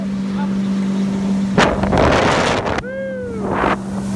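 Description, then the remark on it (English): A motorboat engine drones steadily on the Amazon River while water rushes and wind buffets the microphone in loud gusts. A brief whistling tone rises and falls near the end. No one speaks. “You know, some of my favorite moments was just us wailing down the Amazon, and because there were smaller motorboats attached to the big boat, and during the day we do day trips.”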